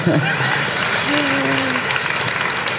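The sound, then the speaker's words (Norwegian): Steady audience applause fills the whole stretch, a dense, even patter of many hands clapping at once, with a brief voice-like tone rising faintly in the middle. “Og så klapper vi.”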